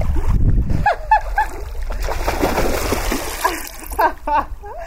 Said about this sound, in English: I'm alone up here, so I strip down and lower myself into the pool of mountain water.